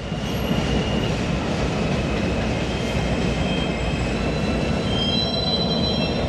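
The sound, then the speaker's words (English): A subway train rumbles past right by an apartment window, a steady, loud roar of wheels on track with high metallic squealing tones running through it. No one speaks. “The train runs right by my window here.”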